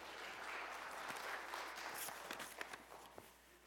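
A small audience applauds steadily, a dense patter of many hands clapping at moderate volume that thins out slightly toward the end, with a few sharper individual claps standing out.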